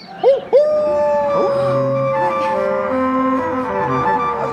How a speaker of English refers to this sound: There it is again. Yeah. It's a dog, guys. People like dogs.